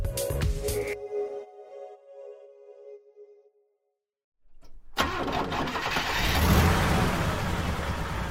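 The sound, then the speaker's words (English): The 6.2-liter V8 engine of a black 2019 GMC Sierra Denali pickup truck, driving through Detroit, rumbles, goes quiet for a moment, then roars back to life and revs hard, a loud, steady growl building as it accelerates. “driving through Detroit in his black 2019 GMC Sierra Denali luxury truck. It's a beast with a 6.2-liter V8 engine.”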